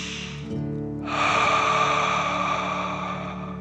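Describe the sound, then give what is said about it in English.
A slow, deep breath drawn in through the nose, filling the belly, then a longer, louder, airy exhale that lingers steadily, over a faint low hum. “Deep breath in and out.”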